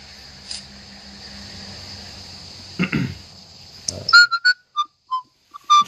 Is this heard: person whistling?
yes